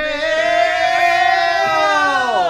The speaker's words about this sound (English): Wait, you gotta say it. We scream mail, so get ready.